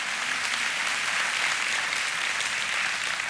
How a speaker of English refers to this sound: I think God deserves a clap offering for that alone. Thank God for that.